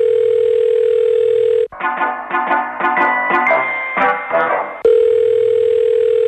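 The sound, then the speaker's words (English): A loud, steady telephone tone drones while a call is being transferred to a superior, breaks off for a few seconds of quick shifting electronic beeps and chimes, then resumes its flat hum. No one speaks. “I'll put you through. Stand by, please.”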